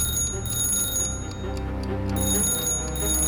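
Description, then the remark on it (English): A telephone rings in Georgi Markov's London flat in August 1978, with bright, high metallic bell trills that repeat in short bursts over a steady low hum, with no voices. “It's August 1978, and Georgi Markov is in his London flat when the phone rings.”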